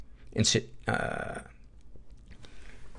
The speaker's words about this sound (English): excuse me. That was a swallowed wrong, not a getting sick cough.